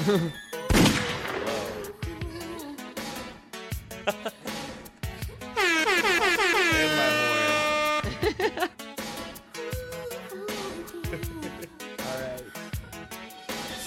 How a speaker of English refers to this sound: I got gunshots.